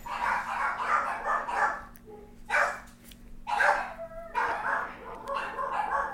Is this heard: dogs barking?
yes